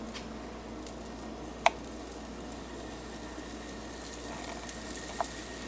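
A steady hiss of flour-coated meat kebabs frying in hot oil, with a soft crackling texture and two sharp pops breaking through. No one speaks.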